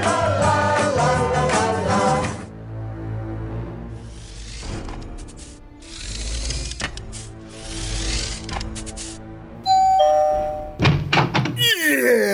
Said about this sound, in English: Right after this time transition sound.